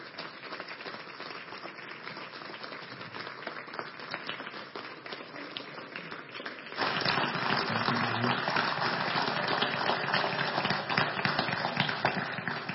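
A church audience stands and claps for a man together in a dense, steady wash of applause that swells noticeably louder about halfway through and keeps going strong to the end, with no voices standing out.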